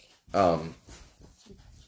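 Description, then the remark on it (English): A puppy, adjusting and moving about, lets out one loud, high-pitched whimpering squeak that slides downward in pitch, followed by softer, quieter sounds and faint murmuring in the background. “hold on, there's going to be a little bit of squeaking. Animals are adjusting and getting in the way.”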